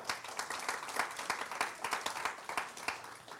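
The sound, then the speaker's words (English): A crowd applauds steadily, dense overlapping claps forming a bright, continuous patter with no voices standing out, moderately loud throughout. “We can clap that up.”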